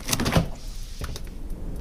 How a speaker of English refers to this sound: Should we invite him in? Yeah, we'll open the door.